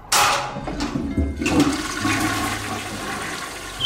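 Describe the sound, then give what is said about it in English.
A pull-cord water-closet toilet flushes loudly, a sudden rushing gush of water that swirls and gurgles down the drain for several seconds, with no voices. “The sound of the flush unleashed a torrent of screams from the woman in the room as the water was sucked down the drain.”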